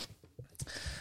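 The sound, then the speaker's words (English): A few harsh, breathy coughing bursts in quick succession from someone choking after inhaling a bunch of chocolate chips, laughing to get the cough out, with a louder rasping stretch at the end. “He's laughing to get the cough out.”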